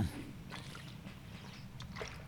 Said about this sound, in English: Oh yeah, that was good water I just drank. Yeah, I drank some water. I did it.